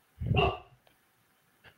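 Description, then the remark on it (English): A chow chow dog lets out a single loud, deep bark in a small apartment, followed by near silence with a couple of faint small knocks. “Sorry, his bark is so loud in my little apartment.”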